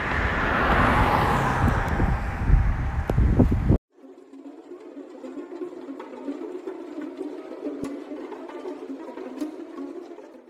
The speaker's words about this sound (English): Cause y'all might hear more of the car sounds than me.